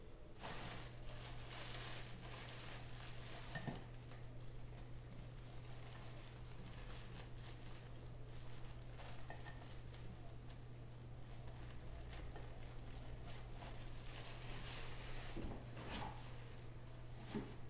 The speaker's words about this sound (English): He has retrieved 2 slices of white bread from a plastic bag. He has placed the 2 slices of bread in the slots of a toaster, set the toaster to defrost, and activated the toaster.